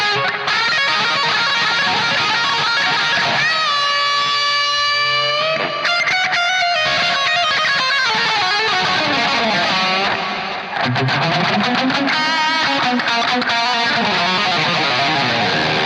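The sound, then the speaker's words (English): A distorted electric guitar riff played through an amp modeler with the speaker simulator on plays alone, loud and dense, with sustained bent notes and fast runs, a wash of reverb trailing behind the phrases. “Just took the reverb down just a touch.”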